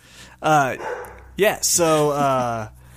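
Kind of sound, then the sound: animal, guard dogs barking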